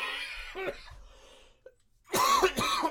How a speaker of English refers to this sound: Oh, fuck, man. Asthmatic cough. Go away.